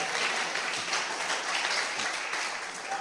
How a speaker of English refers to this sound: Clap for the pastor. He understands what I'm talking about.